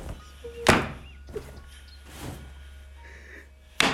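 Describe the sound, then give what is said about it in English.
A sudden heavy thunk, like a head pushed very fast against a chair back, followed by quieter shuffling and a second sharp knock at the very end. “He looks at me for a while and pushes my head very fast towards the back of the chair.”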